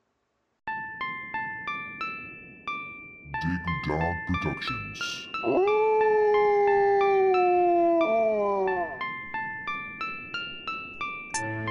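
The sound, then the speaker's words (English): A new hip-hop single starts with a crisp, evenly pulsing synth melody. Midway a spoken voice tag and a long, gliding, howl-like tone cut in before the plucked rhythm returns at steady volume. “Well, real quick, without further ado, let's listen to your new single.”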